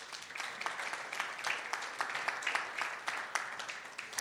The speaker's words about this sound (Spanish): Un aplauso para Oscar.